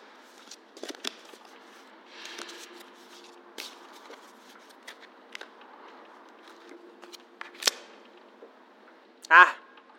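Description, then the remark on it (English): Shuffling of a deck of cards in a subway: soft papery slides and scattered snaps, ending with one loud, fast riffle near the end. “Shuffle, then, when you're ready. Pick a single card.”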